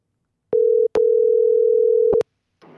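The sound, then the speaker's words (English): A steady, mid-pitched telephone ringing tone: a short beep, a brief pause, then a longer sustained tone, with clicks at the breaks and a faint bit of noise after. “Here, call 12 because he's calling me.”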